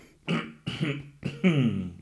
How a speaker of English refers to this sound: That's just me coughing. That's not me kind of signalling that something is off here.